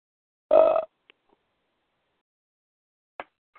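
A single short, throaty belch lasting under half a second, loud and rumbling, followed by a couple of faint clicks and near silence.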